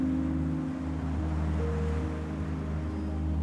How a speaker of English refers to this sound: Time to settle into the deep, beautiful vibrations of water.